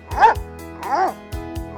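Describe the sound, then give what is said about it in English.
A dog barks, two bright, yelping barks about three-quarters of a second apart, with a few short thumps and a softer bark-like sound following at the end. The dog is Maxine, Pine Plains' official fire dog, who helps firefighters during emergencies. “It takes a brave dog too.”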